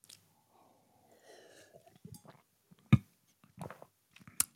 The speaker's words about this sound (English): Sip of the day. Sip of the day right there. That was fantastic. It was right on the money. No cream, no sugar, perfect temp. Just, you want to talk about blackened and perfect right there. That was fantastic.